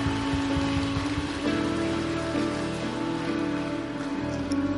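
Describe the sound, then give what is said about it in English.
A church audience claps together as a praise and clap offering to God, a dense, steady wash of applause that holds at an even loudness throughout, with sustained musical tones humming underneath and no talking. “Come on, church, would you give God a great praise and clap offering?”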